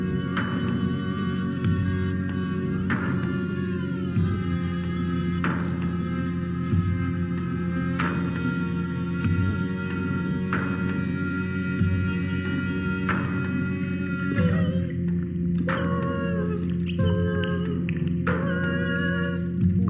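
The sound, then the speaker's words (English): An underwater music performance by a band: sustained, shimmering tones with rich overtones over a steady low drone, new notes entering every couple of seconds and briefer, shifting pitches near the end. No voices. “Here is a bit of ….”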